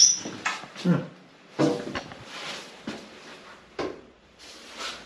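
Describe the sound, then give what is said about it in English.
A shower door being pulled open, with a string of short clunks, rattles and scrapes spread over a few seconds, moderately loud, with no talking. “No, we're gonna pull the door open.”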